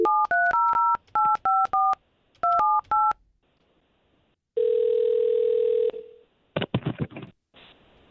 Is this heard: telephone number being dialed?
yes